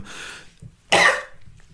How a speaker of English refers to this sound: Sorry, I keep coughing if we forgot to cut those out.